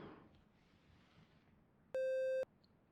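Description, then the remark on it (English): A single steady electronic beep of about half a second, played during a hearing test, rises sharply out of a quiet room hum, loud and pure-toned with a clean start and stop, then the room falls quiet again. “Right, okay, so here we go with the first beep or no beep.”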